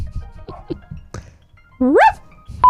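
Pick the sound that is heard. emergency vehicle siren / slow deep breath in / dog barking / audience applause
dog barking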